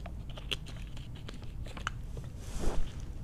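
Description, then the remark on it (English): Someone drinks water just after waking up, at 7:08 a.m.: a string of soft, irregular wet clicks and swallowing sounds, with a louder gulp or rustle near the end, and no talking. “Let me drink some water.”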